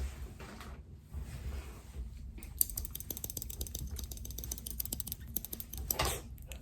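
Rapid scissor snipping as hair is cut with a second pair of scissors, a crisp, quick run of sharp metallic clicks repeating in a fast, slightly uneven rhythm after a brief quieter moment, with no voices.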